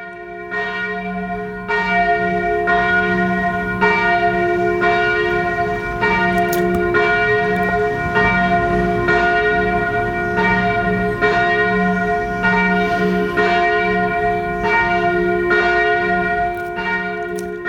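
The noontime bell of the Santa Chiara Church rings loudly and steadily, its strikes repeating about every second with rich, sustained overtones that hang between each stroke, with no voices.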